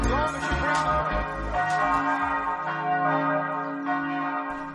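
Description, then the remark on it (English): Church bells ring out in a full, overlapping peal, their sustained tones blending into a continuous shimmering wash with steady strikes throughout, fairly loud and without voices. “The bell, the bell, the bells, the bells, the bells. Again, I keep saying I love the bells.”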